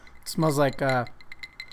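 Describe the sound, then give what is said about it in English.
A short voiced exhale or murmur, then several faint, light clinks of ice cubes against a glass of Rebel Yell Bourbon, an 80-proof whiskey, ticking irregularly in quick succession, quiet. “But it is very light, especially with the ice cubes in there.”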